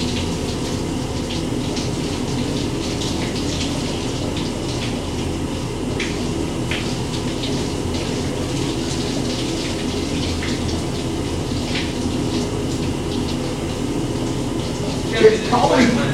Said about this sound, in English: It's probably pretty boring for our viewers that are listening to a shower.